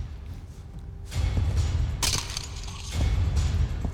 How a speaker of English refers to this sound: I'm trying to figure out when the music starts. Oh, here it is. It's just gunfire right there. That's the music.